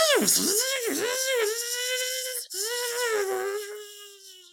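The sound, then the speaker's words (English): A voice imitates a jet ski engine, a continuous whining, revving tone that swoops and dips in pitch, broken by one brief catch for breath halfway, then fading out. “That's definitely a new vehicle because I've never made that noise before with my mouth.”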